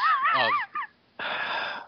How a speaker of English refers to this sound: Yeah, I was breathing into a bag.